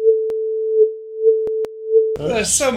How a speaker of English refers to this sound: There's gonna be bleeps. No, you're right, there is. Why don't you censor me?